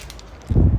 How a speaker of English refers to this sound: It's kind of windy out. Oh, it feels amazing, though. It feels absolutely amazing. It's windy.